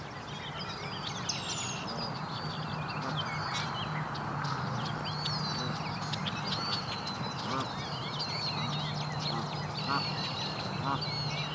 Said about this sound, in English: That's the Canada goose, grunting.